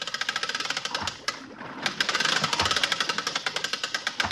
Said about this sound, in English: Boat on deck? Just got it. Well, where's that winch? Sending it right back to you